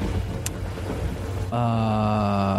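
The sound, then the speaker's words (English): Steady rain hisses over a low rolling rumble of thunder. Halfway through, a sustained droning tone with a rich, buzzing quality abruptly takes over. No one speaks. “You want to let the walls down because it's only us, the thunder, and we're sheltered.”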